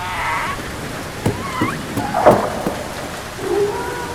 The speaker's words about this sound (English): do you hear that? A little pitter-patter. Uh-oh. It's raining,